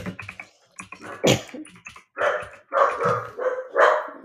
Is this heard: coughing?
no